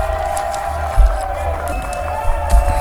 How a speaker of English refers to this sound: And the crowd goes wild.